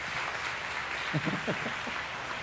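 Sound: round of applause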